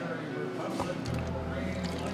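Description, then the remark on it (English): A non-alcoholic lemonade and orange cream drink being poured into a glass, a steady gurgling stream lasting about two seconds, with faint voices in the background. “Take a sip. I'll pour it for you.”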